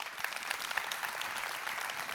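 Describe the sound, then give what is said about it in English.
A crowd claps steadily, a dense wash of many hands applauding at an even level with no voices rising above it. “And because, you clap your hands for that.”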